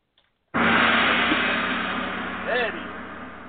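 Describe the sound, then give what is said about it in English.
A single gong is struck as the cue for a show's Black History Moment segment, bursting into a loud, rumbling wash that sustains and fades only slowly, with a brief warbling, pitch-bending shimmer rising out of it near the end. “So without further ado, time for the gong.”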